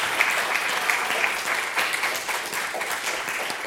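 Sustained applause from an audience, a dense, steady wash of many hands clapping at once with no pauses, fairly loud throughout and with no voices standing out.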